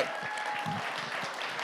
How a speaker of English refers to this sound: All right. So let's clap for him. Come on, clap for him.